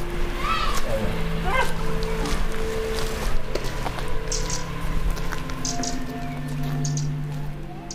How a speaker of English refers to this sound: Oh, and there's a waterfall.